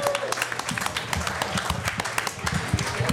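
An audience applauds steadily, many hands clapping in a dense, continuous patter that stays fairly loud throughout, with a faint voice or two mixed in.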